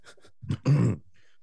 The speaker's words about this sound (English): Sorry, COVID cough there.